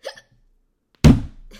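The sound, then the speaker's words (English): A single sharp, loud hiccup bursts out after a brief quiet pause, preceded by a faint short breathy sound. “Stop hiccups.”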